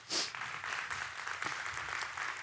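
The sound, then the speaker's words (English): Thin, scattered golf clap from a small crowd of women applauding a group of men: light, unenthusiastic clapping that patters irregularly and stays fairly quiet throughout, with no voices over it. “That right there was a terrible golf clap.”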